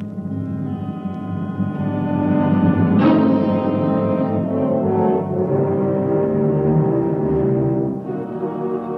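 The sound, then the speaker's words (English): A howling, roaring wind outside a ship that thunders and surges like breaking surf, loud and continuous with low moaning tones, swelling around the third second and then holding steady. No voices are heard. “Outside, the wind thundered and roared like breaking surf.”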